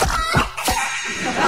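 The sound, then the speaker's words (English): A hen clucks in a quick burst of sharp clucks, loud and clear with no talking, like a short sound-effect sting for the Red Rooster Comedy Hen radio segment. “Red Rooster's Comedy Hen.”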